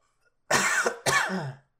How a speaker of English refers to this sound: I'm going to cough.